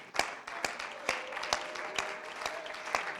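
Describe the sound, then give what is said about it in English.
An audience claps hands in praise to God, with steady rhythmic beats about twice a second standing out over a continuous wash of scattered applause. “Can we give him a hand clap of praise today?”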